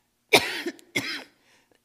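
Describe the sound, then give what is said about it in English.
A person clears their throat in two forceful bursts, loud, with a brief raspy tail after each, then a third starting right at the end. “Hold on, I'm going to clear my throat.”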